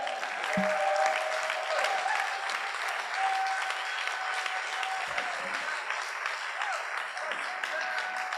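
A church audience claps steadily for several seconds, a dense, even wash of applause with scattered cheers and whoops rising above it, celebrating a story just shared.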